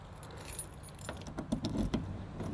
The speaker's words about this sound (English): Okay, I'm getting in my car now.